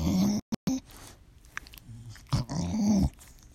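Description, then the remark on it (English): A female pet dog growls and grumbles in several short, throaty bursts with brief pauses between them, its low rumbling voice fairly loud; this is her usual way of vocalizing. “Sorry, my dog is making noise.”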